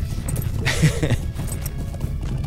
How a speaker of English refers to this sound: That sounds like a plan. I'll just follow you on my horse, or my pony, my humble pony.